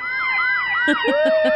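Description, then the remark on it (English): The siren of a tiller fire truck, Ladder 62, wails loudly, its pitch sweeping up and down, then joined by a quick run of four short, rhythmic blasts. “Oh, shit. It's a fire truck.”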